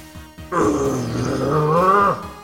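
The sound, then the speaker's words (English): A deep, menacing growl from a voice, rumbling low and steady for nearly two seconds, loud and sustained before trailing off, preceded by a few faint short sounds. “growled Messingham.”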